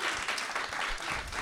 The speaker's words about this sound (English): Round of applause. Thank you very much.